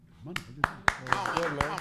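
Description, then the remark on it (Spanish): A single person claps hands about seven times in a steady, even rhythm, each clap sharp and close, with voices talking faintly underneath. “No sé si está bien o no, pero hay que aplaudirlo.”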